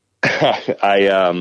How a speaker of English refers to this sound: And excuse me, I'm sorry, I got a bit of a cough.